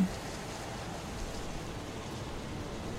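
Steady storm rain hisses without a break, a dense, even wash of falling water with a low rumble underneath, moderately loud and unchanging throughout.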